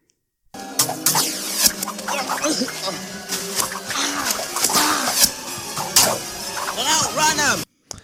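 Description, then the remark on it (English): A busy scene from the film Willow, with brownies' arrows thudding into Willow and his best friend: a rapid flurry of sharp, snapping impacts mixed with squeaky, rising-and-falling chattering voices, steady and loud throughout before cutting off abruptly. “That is Willow and his best friend getting speared by brownies.”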